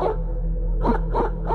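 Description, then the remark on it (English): A female dog barks heavily outside at about 3 a.m. in three short, spaced bursts over a steady low hum, sounding somewhat muffled. “After about 15 or so minutes, I hear her barking heavily outside.”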